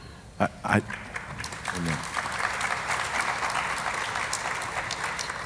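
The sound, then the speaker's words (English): A crowd breaks into steady applause that swells and holds for several seconds, dense clapping after a couple of brief louder bursts at the start. “Y'all didn't have to clap for me.”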